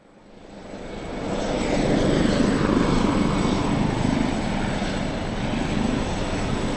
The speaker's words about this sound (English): The men, and it's almost all men, who work on the oil rigs dotted through the North Sea, have a routine. Every time the helicopters fly them back from their three-week stay, they land at this airfield on the outskirts of the city.